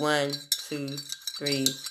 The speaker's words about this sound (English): I'm stirring some tea, some ginger tea. I ain't on no Get Out. So if you want to mute the podcast for like 5 seconds, because I'm about to stir my tea up a little bit.